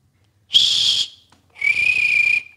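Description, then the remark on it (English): Two loud, shrill whistle blasts made with the mouth, imitating a coach's whistle: a short burst followed by a longer sustained one after a brief pause, alone with no talking. “No, like a actual coach's whistle.”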